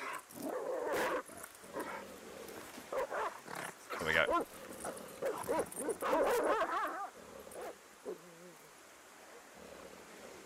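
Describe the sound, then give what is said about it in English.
The speaker's own dogs bark in short, sharp bursts mixed with high, whiny whimpers, loud throughout, while a person speaks briefly over the commotion. “Just gonna switch my dogs down a little bit loud.”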